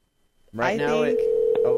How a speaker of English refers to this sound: We're ringing. It's a good start. That's how I like to start all my phone calls off. Ringing. It's going to go to voicemail.